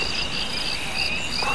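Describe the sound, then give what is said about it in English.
Crickets chirp steadily in a continuous, high-pitched trill that fills the whole moment, even in volume, with no voices or other sounds. “Cricket. Cricket.”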